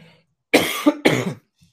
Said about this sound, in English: First, I'm going to cough into the microphone several times. It's going to be great for the audio.